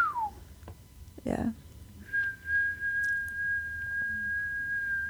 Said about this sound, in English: It's because I was whistling. Oh, doesn't like it. I didn't like the feedback from the whistling.